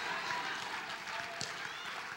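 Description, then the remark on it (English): An audience claps together in a dense, steady wash of hand claps, blended with crowd voices and a continuous buzz of noise throughout the short stretch. “See, the older folk clapping, the younger folk like, do it now.”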